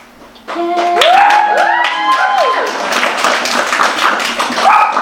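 A small audience breaks into steady applause lasting several seconds, with rising and falling cheers and whoops riding over the clapping.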